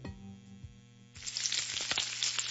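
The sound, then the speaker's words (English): Johnsonville sausage strips sizzle and crackle in a hot pan, a steady hiss with scattered sharp pops that kicks in after about a second of low electrical hum. “Hear that? Sounds like sizzling bacon, right?”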